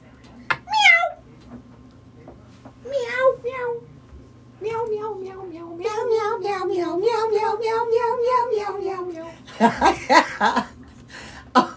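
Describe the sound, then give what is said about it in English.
A cat meows a few times: two short, rising cries, then a long, wavering, drawn-out meow. The sound ends in a brief burst of noisy chuckling. “Meow.”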